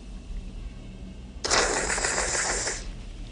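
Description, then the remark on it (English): After a quiet moment, a fast, wet slurping sound made with the mouth, improvised by Hopkins in a film scene after the line about fava beans and a nice Chianti, bursts in: a hissy, sucking rush lasting just over a second, then stops abruptly. No one speaks. “And obviously the fast slurping was an improvisation from Hopkins himself.”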